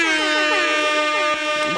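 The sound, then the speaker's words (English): A loud, blaring air horn blast holds steady for under two seconds, its brassy tone sustained without a break. “All right, but you can get some air horns.”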